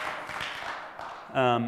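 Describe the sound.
A church audience claps to celebrate the year's ministry, in a steady, dense patter of many hands for over a second, then a voice starts speaking over the tail of the applause.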